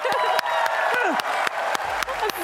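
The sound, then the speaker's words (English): A live audience at a Good Game Live show applauds, a dense, steady wash of many hands clapping with a few sharper claps standing out and some voices cheering underneath, loud throughout. “Big round of applause for everyone!”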